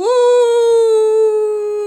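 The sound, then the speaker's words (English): A voice imitates a dog howling like an ambulance siren: one loud, steady, sustained wail, holding a nearly level pitch for about two seconds. “You sound like that dog who dressed up like the Wambulans.”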